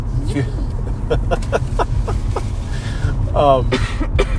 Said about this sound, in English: I'm sorry, I'm having a coughing.